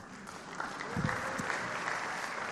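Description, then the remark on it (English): A crowd claps steadily for a couple of seconds, a dense wash of many hands with a brief swell in the middle, no voices standing out. “You shouldn't clap.”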